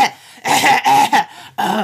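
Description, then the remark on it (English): A few short, harsh coughing bursts and throat clearing, fairly loud, in a quick irregular series with brief pauses between them and no talking. “She had not coughed, had a tick on her throat all day.”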